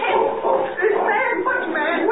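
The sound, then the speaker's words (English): A dog barks and yelps in a steady, excited stream, loud, with a muffled, narrow-band quality and voices mingling underneath. “Jimmy, the dog knows you. Run ahead. Call it off.”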